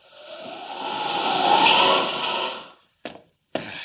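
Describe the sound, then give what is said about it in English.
The glass of a roof skylight smashes loudly. A long, swelling crash of noise rises and fades, then two short, sharp impacts follow a moment later. No one speaks. “There's the skylight. Or rather, there was the skylight.”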